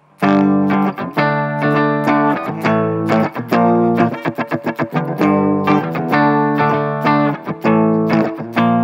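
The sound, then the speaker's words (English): Electric guitar played through crunchy simulated amplifier distortion, loud and harmonically rich, with sustained chords broken by a burst of quick staccato strums midway. No one speaks. “OK, so I have, it's the first, it's also kind of crunchy amplifier.”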